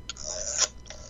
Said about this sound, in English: Yes. Yes. The old rotary phone. You know what that is? Rotary.